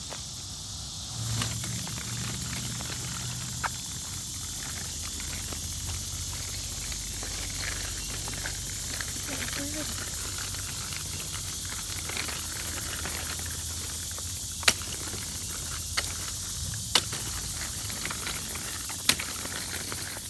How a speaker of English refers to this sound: Why are you clicking those stroller wheels? Are you trying to get some feels of annoyance from the listeners?